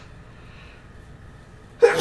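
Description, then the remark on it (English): A person sneezes twice in a sudden, loud burst near the end, after nearly two seconds of quiet hum. “Bless you twice.”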